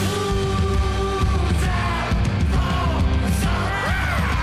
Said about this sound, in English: That guy's screaming. Man, whoever does that, he must be crazy. That's Howard Dean.